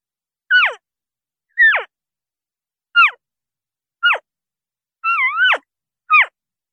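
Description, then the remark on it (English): A voice imitates elk calf calls: six short, high, squealing mews that slide sharply downward, evenly spaced with gaps between, one longer wavering call near the end. “I'm going to do calf sounds, which are baby elk.”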